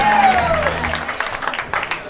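A crowd bursts into loud, dense applause and cheering for a woman being called up to join the host, with a sliding whistle at the start and scattered sharp claps continuing throughout the short burst.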